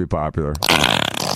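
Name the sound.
imitated fart noise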